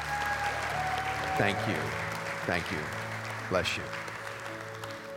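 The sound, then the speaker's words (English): A church audience claps in sustained, dense applause of praise for a baby boy, a steady wash of many hands, while a man speaks briefly over it. “Come on, give him a hand clap of praise.”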